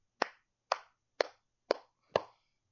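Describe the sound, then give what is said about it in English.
One person claps five times at a slow, steady pace, each sharp hand clap distinct, with brief quiet between them and no talking. “That was me applauding, not like, I don't know.”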